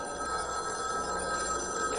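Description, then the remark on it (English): A telephone bell rings steadily and fairly loudly, a continuous metallic trill with strong tonal bands, filling the moment with no voices over it. “Your phone's ringing.”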